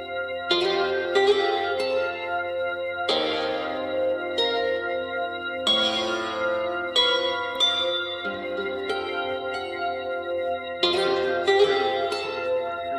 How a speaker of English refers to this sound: Yeah. And then you add in that drone underneath it that's so dissonant to it. And it's like, what the hell is going on?